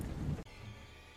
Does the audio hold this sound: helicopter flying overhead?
no